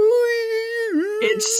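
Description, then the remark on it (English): A voice imitates the high, squealing hum Spock makes to activate the Optiwad, holding one steady nasal pitch for about a second before it wobbles and dips, then ends in a few breathy, hissy fragments. “Spock has to hum to activate the Optiwad.”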